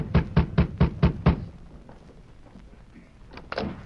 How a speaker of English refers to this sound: The sheriff rapped on the door.